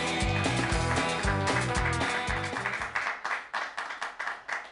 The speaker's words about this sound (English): Everybody, once more, clap your hands together for Brady.